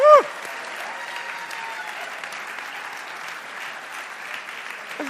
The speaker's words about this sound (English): But look, thanks for leading the worship. Thank you. Round of applause.